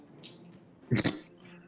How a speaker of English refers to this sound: What was that? What was that pathetic whimper?